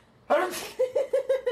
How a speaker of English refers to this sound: Anyway, I got a sneeze coming out here. Okay. Almost.